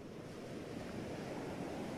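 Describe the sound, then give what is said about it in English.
A steady, rushing wash of ocean surf at the edge of the ocean, beside the porous planks of a boat called the Palapa, rolls continuously at moderate volume, with a breathy wind-like hiss mixed in and no distinct individual crashes standing out. No voices are present. “And now, here they were, at the edge of the ocean, the beginning of their journey's final leg, beside the Palapa's porous planks, wondering if they should climb aboard.”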